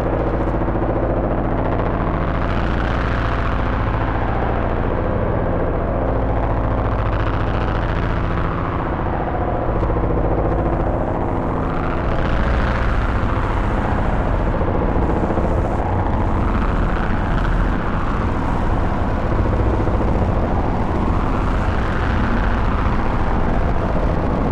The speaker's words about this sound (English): This is what our drone layer sounds like without the morphogen now.